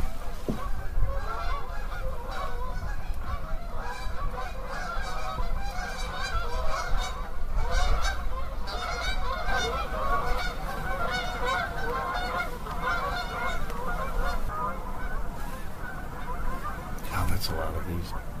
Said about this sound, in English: And I know everybody can relate to this, but when I grew up, we hardly seen any geese around here. And now, you know, the whole countryside is full of Canadian geese. Not more than 10 minutes later, we had visitors.